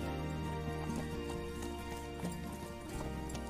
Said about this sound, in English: Dang. Who thought a black and a white horse walking together? Yeah.